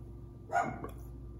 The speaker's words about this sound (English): Cue the dog barking.